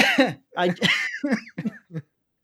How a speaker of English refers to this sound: now I got a cough.